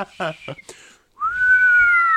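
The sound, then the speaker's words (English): A person whistles one long, steady note that slides upward and then holds, loud, just after a brief burst of someone speaking. “Do you think that like one day you'll go out and you'll see a guy on like a balcony just like whistling at how windy it is?”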